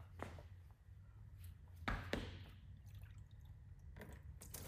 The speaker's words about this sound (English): All right. So I am going to pour the antifreeze in there. Keep the camera rolling in case I mess up.